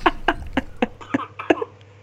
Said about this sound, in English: Coughing up my guts.